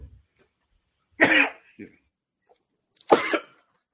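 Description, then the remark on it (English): Two loud, sharp sneezes about two seconds apart, each a brief explosive burst of breath and voice, with near silence between them and a faint short sound after the first. “It was like I was sneezing and you were where sneezes are contagious.”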